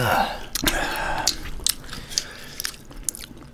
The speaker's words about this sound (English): This is cracking a D. And then slurping off that thing. Cracking in a slurp. And crack and slurp that D and then put a beef stick in your mouth.